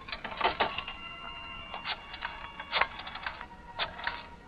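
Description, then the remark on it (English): A telephone handset is lifted and a number is dialed, a string of crisp mechanical clicks and rattles in uneven bursts, with no one speaking. “Pick up that phone. Call Tony Baines at his club.”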